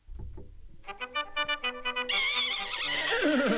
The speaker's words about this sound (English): Yeah, man, giddy up. Yeah, man, up on the racetrack, man. Original galloping horse.